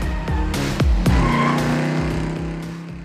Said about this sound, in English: And of course, South Beach. That iconic shoreline of newly built skyscrapers reaching into the sky, with drop-top convertibles revving up and down Ocean Drive.